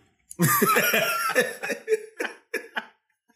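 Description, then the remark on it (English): A loud coughing fit: one long harsh burst of rapid hacking, followed by three or four shorter separate coughs that trail off, with no talking. “Hey, did he cough?”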